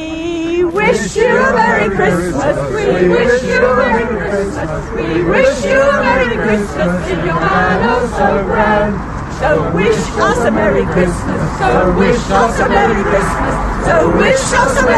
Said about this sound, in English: Organisers were expecting at least 50 people here today. The crowd is made up of homeowners, concerned residents, waving various placards